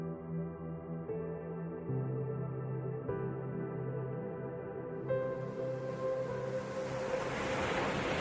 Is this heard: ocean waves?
yes